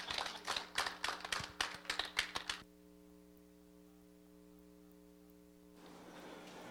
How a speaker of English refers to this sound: We love you guys. Give them another hand of applause, guys.